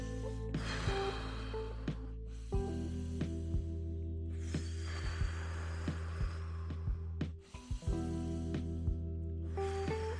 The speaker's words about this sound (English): Shit, that felt good. Yo, you get a high out of it. Yo, you get a serious little high out of breathing like that.